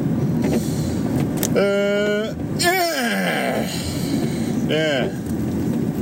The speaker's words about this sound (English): I don't know if this is going to be audible at all, because you've got the wipers and the sound of the engine and everything, but, you know, you get what you get, don't you?